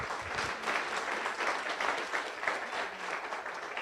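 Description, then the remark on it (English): An audience claps steadily throughout for a speaker, a dense, even wash of many hands with no voices rising above it, holding at a fairly constant moderate loudness. “Can I just get one more round of applause for our speaker and for Kathi Decker?”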